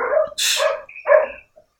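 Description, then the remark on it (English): Dogs at a house bark at kids who have come to the door, in a quick burst of three or four sharp barks, loud and overlapping, with brief gaps between them and no talking. “I got some random kids at my house right now, and my dogs are going crazy.”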